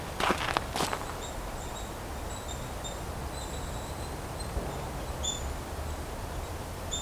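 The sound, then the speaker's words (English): A nuthatch pecks at tree bark, trying to get a bug, probably a larva, out of it, with a quick burst of sharp, dry taps at the start, then stops. Thin, high chirps repeat faintly over steady outdoor hiss, and no one speaks. “No, it's a nuthatch making that sound. Trying to get a bug out of some tree bark.”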